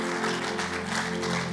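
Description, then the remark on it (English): A crowd claps together for Jesus in a steady, dense wash of applause that holds at an even loudness throughout, with a faint low hum sustained underneath. “If you understood what I just said, give Jesus a good hand clap.”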